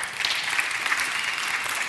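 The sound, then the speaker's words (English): Scattered applause from a small group of five people, steady dense clapping at moderate volume across the whole short stretch, with no voices over it. “Let me just tell you, five people clapped.”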